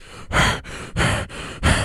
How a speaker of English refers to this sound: Leonardo DiCaprio breathing into a microphone.